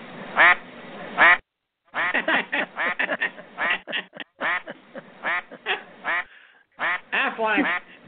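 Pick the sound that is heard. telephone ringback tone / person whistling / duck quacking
duck quacking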